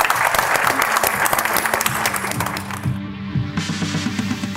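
An audience at a Wine Times wine-tasting evening breaks into a round of applause for the evening's guests, a dense, steady wash of clapping that stays loud for several seconds before thinning slightly toward the end.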